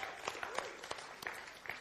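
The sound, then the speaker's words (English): An audience breaks into steady applause for a team, a dense patter of many hands clapping at once with sharper individual claps poking out, fairly quiet and continuous throughout. “Yeah, give them a clap.”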